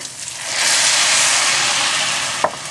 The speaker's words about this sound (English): And now I'm gonna add my rice, and I'm gonna do right about 3 cups or so of rice. So I'm sauteing the rice.